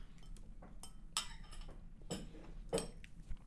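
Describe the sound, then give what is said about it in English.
Quiet, irregular clinks and scrapes of a utensil against a dish as someone eats mac and cheese, with several sharper taps standing out over a low steady background hum. “So I'm going to finish up my mac and cheese here so I can get into this.”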